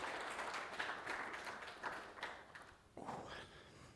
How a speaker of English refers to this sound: Thank you very much. You want to give a nice round of applause to these.